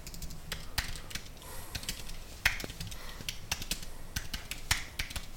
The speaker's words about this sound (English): Sorry, just really bad at typing and trying to talk at the same time. I have to really concentrate.